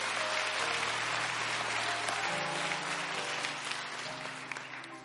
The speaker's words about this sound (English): Let's give this choir a hand clap as well.